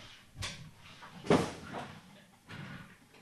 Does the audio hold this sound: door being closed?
yes